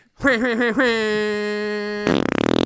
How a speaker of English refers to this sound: That was good. Yeah, that's what it was. Damn it. Wasting space on these farts.